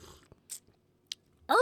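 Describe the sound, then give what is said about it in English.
A couple of brief slurping sips of coffee with chicory in it, with a quiet pause between them, followed by a voice starting to speak at the very end. “I just took a sip of that chicory, that coffee.”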